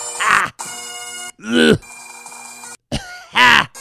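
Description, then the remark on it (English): Three loud, rasping coughs from a man with a reedy, wheezing pitch, separated by a steady droning whine that hangs between them like a held bagpipe note, all prominent. “Can you imagine when he coughed, it sounded like a bagpipe?”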